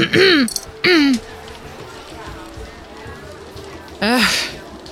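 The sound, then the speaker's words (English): A voice clears its throat in three short, loud, voiced bursts: two in quick succession, then a pause of a few seconds before a final one, with faint background noise between. “So if I'm not interrupting, you hear … clear her throat.”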